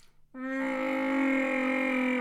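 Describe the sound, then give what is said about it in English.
A person imitates Chewbacca's roar: after a brief quiet moment, one loud, sustained, harmonically rich growling wail holds at a steady, fairly high pitch for about two seconds, with no talking. “My Chewbacca impression. Yeah, do it.”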